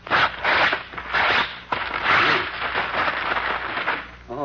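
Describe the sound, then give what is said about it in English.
A thick telephone book is ripped apart by hand by a very strong man as a show of strength, in a run of loud, harsh tearing bursts, one after another for several seconds, rasping and crackling with no voices over it. “Here is a telephone book.”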